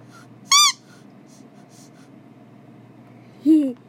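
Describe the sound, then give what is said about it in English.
Two short squeaks from a little squeaky dog toy belonging to a dog named Kazi, the first high and bright, the second lower and sliding downward, separated by a few seconds of quiet low hum. “That's a little dog toy for my dog, Kazi.”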